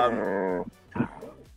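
animal, dog barking

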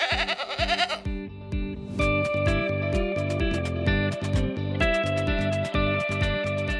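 animal, goats bleating

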